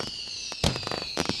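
Fireworks explode in a rapid series of sharp, crackling bangs, with one heavy burst in the middle and another cluster near the end, over a steady high-pitched whistling hiss.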